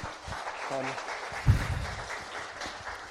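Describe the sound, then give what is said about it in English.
An audience gives a round of applause to thank a speaker, clapping steadily for a few seconds, a dense wash of hands from a crowd, with a brief voice and a low thump partway through. “Round of applause”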